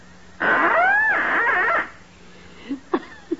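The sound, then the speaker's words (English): A small duck call held to the lips mimics the mating call of a hen mallard, blowing one long, loud, wavering honk lasting over a second, followed by a few short, softer squeaks and blips. “I take this trusty little duck call, place it to my lips, and gently and sweetly, I sound the plaintive mating call of a lovesick lady mallard.”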